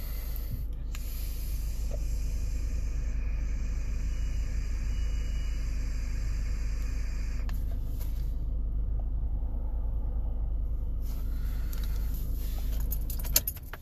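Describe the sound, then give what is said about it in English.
A car engine, just turned on to warm up on a chilly day, idles with a steady, low, droning rumble that holds throughout, while keys jingle and rattle over it; no one speaks. “So I turned the car on just so I can warm up a little bit.”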